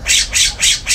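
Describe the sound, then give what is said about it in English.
A pet bird squawks loudly and repeatedly, four harsh, shrill calls in quick, steady succession, with no talking over them. “Your bird won't shut up!”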